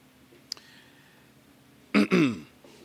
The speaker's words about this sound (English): Oh, yeah, clear your throat.